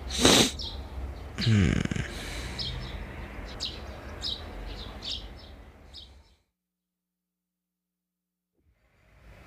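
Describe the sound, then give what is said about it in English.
Birds chirp in a quick series of short, high tweets over a noisy background, following a couple of loud, abrupt snort-like bursts at the start, then everything drops to silence. “Birds chirping.”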